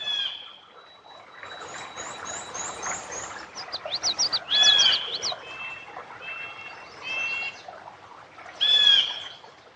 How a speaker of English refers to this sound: Thief! That's a blue jay calling.